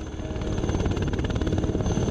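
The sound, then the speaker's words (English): A Huey helicopter flies over the Borneo jungle about 250 meters off the ground, coming in from San Marinda to a mine site, its rotor beating in a fast, steady thumping rhythm over a loud, continuous engine roar, with no voices. “There I was, sitting in a Huey, choppering in from San Marinda into the site.”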